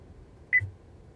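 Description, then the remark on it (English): A single short electronic beep, a phone's Bluetooth connection tone as Bluetooth turns on, chirps once over a faint low hum, clear, with no one speaking. “She must be looking at her phone and Bluetooth came.”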